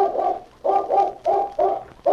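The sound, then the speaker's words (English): A dog named Chris, a scent-tracking dog, gives a run of about six short, tonal, mid-pitched yelps and whines in a steady, uneven rhythm, fairly loud, with no talking over them. “There's a dog that can follow a scent from here to kingdom come.”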